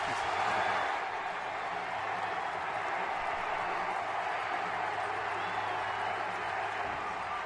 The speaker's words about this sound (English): There's a lot of cheering. I left it in here for theater of the mind, setting the stage.